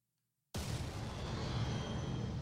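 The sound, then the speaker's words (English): After a brief silence, a sudden loud gunshot blast from a movie's production company logo intro, a bullet flying through the WB logo, bursts in and sustains as a dense, roaring rumble for about two seconds, with no voices. “You hear the gunshot, and then it, yeah, blows through the WB, and then through the dark castle.”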